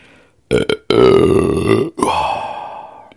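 A loud, drawn-out burp after drinking a fizzy drink breaks into several croaky bursts with short gaps between them, the last trailing off over about a second. No talking is heard.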